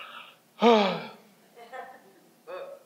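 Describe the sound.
A person lets out a loud, drawn-out, exaggerated yawn with a falling pitch, followed by a couple of softer breathy vocal sounds.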